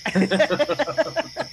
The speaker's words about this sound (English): You hear that? Those crickets out there? Everyone listen.